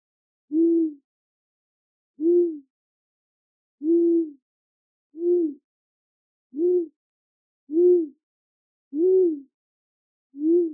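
An owl hoots eight times in a steady, evenly spaced series, each low, mellow call short and clear against an otherwise silent background.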